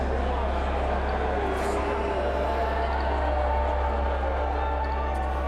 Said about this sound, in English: event organizers asked people in the crowd to put on a mask, and get this, people in the crowd started booing.